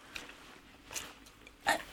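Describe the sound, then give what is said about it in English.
A big dog makes a few short, breathy noises like snorts or sniffs, spaced apart over two seconds. The last burst is the loudest, and no one speaks. “What was that? Just a dog.”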